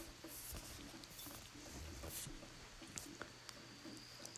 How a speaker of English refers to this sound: And you can hear the rain dripping off the roof. And over in the woods, you can hear the rain hitting the leaves and falling off the leaves and hitting the ground. And it's just a gentle rain.